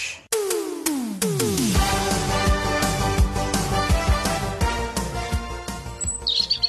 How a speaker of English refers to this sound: I'm going to play you a ton of bird sounds, okay? And then you need to tell me, you need to tell me what type of bird is that.